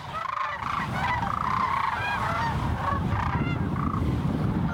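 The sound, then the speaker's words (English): A large flock of cranes calls continuously along the Platte River, heard from an observation blind: dense overlapping rattling bugles layered at a steady level over a low rumbling background, with no one speaking. “Lena's presentation is an assignment that was part of the Platte River Crane Experience pop-up photography and writing class”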